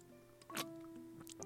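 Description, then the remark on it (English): A person drinks a glass of water, sipping and swallowing with a couple of soft, wet gulping sounds about half a second apart over a faint steady hum. “Look, observe, I'll drink this glass.”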